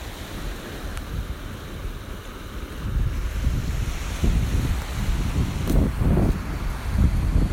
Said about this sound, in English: So here's the sea, listen to it. Can you hear it? Can you hear the sea? Can you hear it?